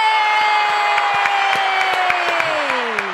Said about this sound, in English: That must have been a recorded crowd. I've just never heard that many applause when my name's brought up. That's for sure.